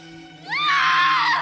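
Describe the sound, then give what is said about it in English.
A woman in labor lets out a loud, piercing scream that rises sharply in pitch and holds for about a second, strained, over a faint steady low hum. “As … screamed”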